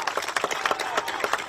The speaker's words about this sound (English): In fact, I'd like to start off, can we please have a round of applause for the many police officers who are here today?